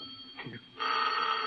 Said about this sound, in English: better answer the phone.